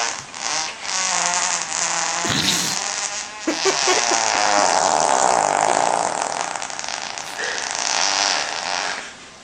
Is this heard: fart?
yes